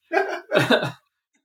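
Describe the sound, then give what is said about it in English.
Two loud, throaty belches follow one another in quick succession, the second longer and rumbling, then silence. “We got belching and coughing all over the place.”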